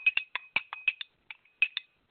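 A coffee cup clanks repeatedly in quick, uneven bursts, about a dozen bright ceramic clinks with a brief pause partway through. No one speaks.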